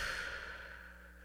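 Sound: slow deep exhale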